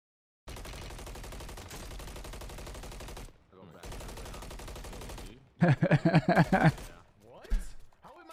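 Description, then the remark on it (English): Rapid bursts of Call of Duty video game gunfire, with bullets hitting water, crackle in long, dense volleys, broken by short pauses, then a louder, sharper flurry of shots near the end. Voices talk at points over the firing. “So would he have to shoot a little bit ahead of him?”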